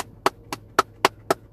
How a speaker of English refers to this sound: But I just don't want this banging sound to sound too close. You're going to think I'm gross, but it's dip. I'm rattling the can around so I don't just grab a big old bunch.